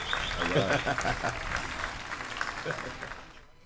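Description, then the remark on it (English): A burst of applause sound effect, dense overlapping claps with a bright, crowd-like wash that stays steady and fairly loud, then thins out and fades at the end. “Oh, I forgot to do the clap.”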